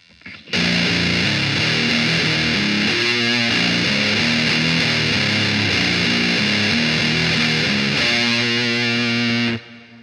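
An electric guitar runs through an MD2 distortion pedal with all the knobs at 12 o'clock, heard by itself, playing a loud, thick, buzzing riff of shifting notes and chords for about nine seconds, with no talking, then cuts off abruptly.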